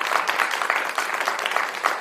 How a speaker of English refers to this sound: Okay, here we go. Cyril Ellis, Charles Parker, Lance Redman, you're getting the big clap.